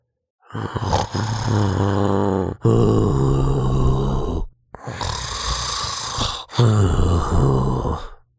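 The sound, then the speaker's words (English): Loud snoring from the big bad wolf of Little Red Riding Hood, likely voiced by a person, asleep in bed in the grandmother's house after a big meal: four long, rumbling, growly snores with brief pauses between them, and no speech. “A hunter heard the snores and thought it was a bit strange.”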